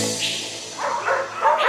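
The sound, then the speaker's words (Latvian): A small dog barks a few quick, high yips in a row, fairly loud, with no one talking. “Ieklausīsimies mazo draugu balsīs, kas mūs uzrunā ikdienā, jo viņiem ir ko teikt.”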